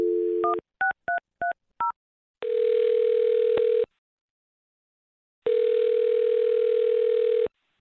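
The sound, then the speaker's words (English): A man's phone number is dialed: a short dial tone, then a quick run of touch-tone beeps, followed by two long, steady ringback tones separated by silence. The sounds are clear, with no voices. “I'm going to dial his phone number right now then and see if we can get your answer.”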